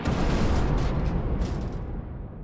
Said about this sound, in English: The plane lifted off with a thunderous sound, climbed to several hundred feet, and then, all of a sudden, it stalled, dipped to one side, and fell back to Earth in a fiery explosion.